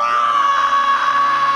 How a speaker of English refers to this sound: We're going to roar over her. Okay, ready? 1, 2, 3.